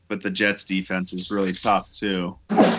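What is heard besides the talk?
sneeze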